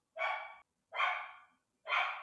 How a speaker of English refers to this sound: My dog is mad about something.